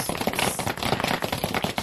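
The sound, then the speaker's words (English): A round of applause for a guest welcomed onto a show: many hands clapping in a dense, steady patter of sharp crackling claps, fairly loud and sustained throughout, with no voices. “That's a nice round of applause.”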